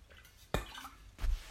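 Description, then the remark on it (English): A person takes a sip of water: a sharp wet gulp, then a second softer swallow about half a second later, with quiet background noise and no talking. “Let's take a drink of water.”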